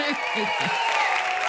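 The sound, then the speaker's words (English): A steady burst of applause played as a sound effect, a dense crackling wash of clapping held at an even level throughout, with a faint murmur of voices underneath at the start. “Would you mind giving us another applause line?”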